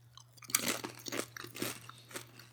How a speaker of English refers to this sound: Wow. That is just a good chip. It is. Like, some really good crunch to it. It's not, like, super thin, but it's not super thick where it's going to, like, cut up your mouth.